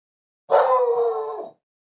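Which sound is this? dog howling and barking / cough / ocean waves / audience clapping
dog howling and barking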